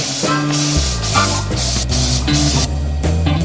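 An insecticide aerosol spray can hisses in several loud, short bursts, one after another, sprayed at a cockroach in a room, over steady music with a deep bass line.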